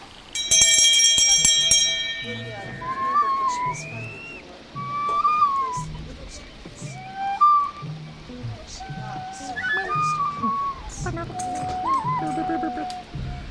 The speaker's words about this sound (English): Step through the glass pane into the bathroom mirror where the bootman was playing ever so joyfully all by himself with this bell going ding dong!